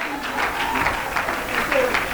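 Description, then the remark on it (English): An audience claps their hands unto God in worship, a dense, steady wash of many claps that keeps an even loudness throughout, with voices mingling underneath. “Oh, let's clap our hands unto Him.”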